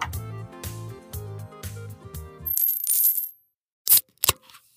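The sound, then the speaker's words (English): A short burst of music gives way to dice rattling and tumbling across a table, ending in two sharp clacks as they settle. No one speaks. “Now go get some dice and roll them.”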